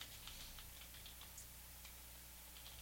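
Soft, irregular clicking of someone typing on a computer keyboard, a quick scatter of light taps heard alone over a faint, steady low hum.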